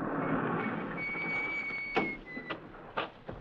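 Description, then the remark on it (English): The side door of an abandoned barn opens with a thin, drawn-out metallic squeal, followed by a few sharp scraping knocks and clunks, over a steady background hiss. “It's a little side door.”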